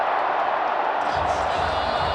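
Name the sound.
stadium crowd cheering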